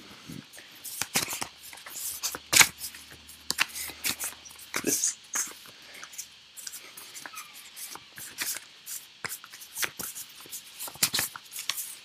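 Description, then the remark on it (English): A deck of cards being shuffled, a steady series of quick riffling bursts and soft flicks, with faint breathy murmuring underneath at times. “I am shuffling them.”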